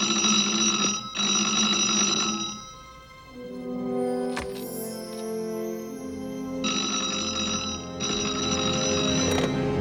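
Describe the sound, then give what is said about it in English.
A telephone rings at Andrea's place as Batman returns there, in two loud, buzzing bursts, one at the start and another about six seconds later, with a quieter tonal hum and faint clicks filling the gap between rings. “With this info, Batman returns to Andrea's place as the phone rings.”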